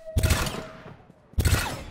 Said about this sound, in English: As gunshots start erupting from the building that is behind you, you see as there are some shots that are coming from, like, down the hallway, down the alleyway that you guys took out to get to this area.